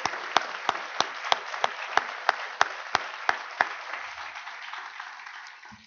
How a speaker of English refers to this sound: if you'd all join me for just a moment of a round of applause for Art